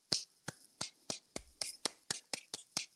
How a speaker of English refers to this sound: Good for you, Slow big clap man. For the ice cream truck.